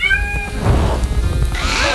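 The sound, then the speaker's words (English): A performing cat named Jasper yowls after landing on a hoop instead of jumping through it and burning its fur during a show act, in pained, wavering cries, a high drawn-out wail that breaks and rises again, loud over a constant rumbling, noisy background throughout the two seconds. “Through the hoop, Jasper. Not on it. Oh, God.”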